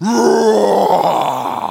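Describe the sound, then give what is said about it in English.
A lion's deep, drawn-out growl rumbles loudly for nearly two seconds, its low pitch wavering and sliding downward in one continuous, throaty groan. “But have you ever just listened to the way a lion interacts with his environment?”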